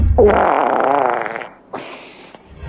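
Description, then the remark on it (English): A long, loud fart with a wavering, sputtering tone runs about a second and a half, then a shorter raspy one follows after a brief pause. No one speaks. It is a track from an album of recorded farts. “Why, I mean, that's someone forcing it through sweaty cheeks.”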